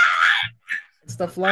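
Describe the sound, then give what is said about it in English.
A voice imitates a girl screaming with a shrill, strained cry lasting under half a second, followed by a few short vocal bursts and a higher, tonal yelp. “The girl starts screaming, ah!”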